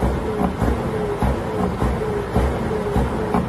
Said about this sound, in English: So that's basically, apparently, a truck is using his air brakes and revving his engine, according to this report.